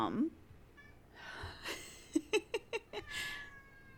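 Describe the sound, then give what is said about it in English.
A cat meows: a drawn-out cry, then a quick run of five short chirpy mews, and a final longer meow, with quiet background noise and no talking. “Hi, kitty.”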